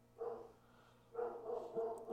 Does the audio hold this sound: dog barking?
yes